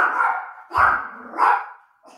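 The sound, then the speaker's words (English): A small 7-pound dog barks three or four times, sharp, high yaps spaced roughly evenly with brief pauses between them and no one talking. “Are you a dog, Mom? He can't believe that you've even brought this up.”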